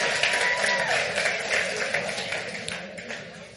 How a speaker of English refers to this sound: Everybody give our worship team a hand clap. That was awesome.